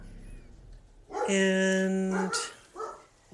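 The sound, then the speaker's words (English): A dog barks, one loud, drawn-out bark followed by a shorter, softer yelp, with a bit of faint speech around it. “Sorry about the dog.”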